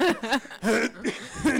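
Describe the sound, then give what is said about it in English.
A voice mimics a wheezy, asthmatic cough: a rapid string of about five short, raspy, voiced hacks, moderately loud, with no other speech. “He would walk around town all day, coughing, wheezing, groaning and moaning.”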